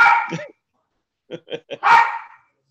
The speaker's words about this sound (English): the dog's barking at him and whatever.